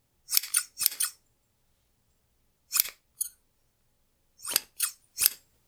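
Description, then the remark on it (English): Scissors snip briskly through pieces of silk in short bursts: a quick cluster of three or four crisp cuts, a pause, two more, then another rapid set of three. Clear, no voices. “The sound of scissors cutting briskly through fabric was quite distinct.”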